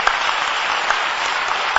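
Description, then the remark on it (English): A crowd claps steadily together, a dense, even wash of many hands with a few sharper claps popping out, sustained at a moderate level with no voices. “If you are clapping, you are clapping for Jesus.”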